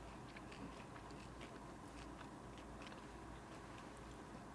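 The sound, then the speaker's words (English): Quiet crunching of a churro-flavored snack with notes of cinnamon and sugar being chewed, a steady run of small crisp bites and crackles over a low background hum, with no talking. “Similar crunch.”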